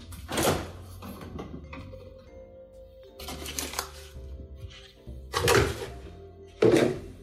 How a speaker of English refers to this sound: And I will grab my dairy out of the fridge.